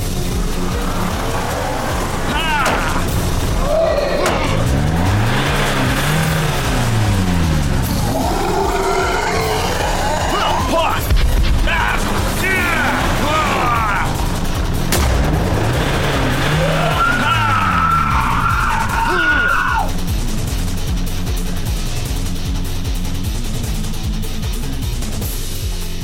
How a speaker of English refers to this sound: you feel the car driving a little oddly, a bit wobbly.